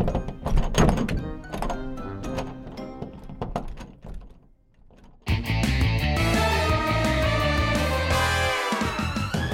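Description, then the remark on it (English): A stuck attic door, its frame spread with dandelion oil, is yanked repeatedly, giving a rapid series of heavy wooden thunks and rattles. After a brief lull, a loud, dense, sustained burst of sound cuts in abruptly and continues to the end. “In order to keep y'all on the edge of your seats about if my loving dandelion oil works on this stuck-up attic door, I'm gonna send y'all to commercial.”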